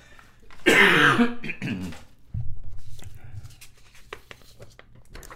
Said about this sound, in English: Excuse me while I cough.